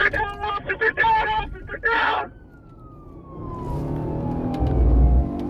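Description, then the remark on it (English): A car engine roars as the driver accelerates, a low rumble swelling louder toward the end under a falling whine, after a burst of shouting voices at the start. “You hear him hitting the gas.”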